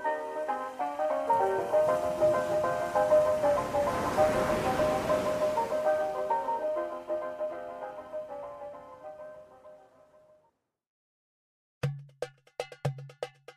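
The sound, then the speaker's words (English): A soft ocean wave surges in and washes back out beneath sustained tonal music, the whole wash fading away before a voice starts talking at the end. “So sit back and listen to the tale as the ocean breeze blows through the open windows.”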